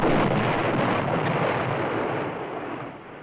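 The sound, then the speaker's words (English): A Christmas cracker is pulled on a count of three and goes off with a loud bang that spills into a rough, crackling rush of noise, slowly fading over a few seconds with no voices. “Well, we've got four crackers here”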